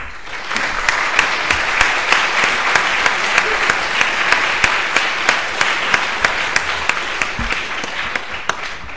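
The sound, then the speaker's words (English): Sustained spontaneous audience applause after a lecture on humanitarian law, a dense wash of many hands clapping steadily at a fairly loud, even level, with a few sharper claps standing out throughout. “I think the spontaneous applause speaks for itself.”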